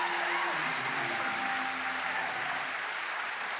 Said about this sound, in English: I wish somebody would give a clap up in here for the blood of Jesus.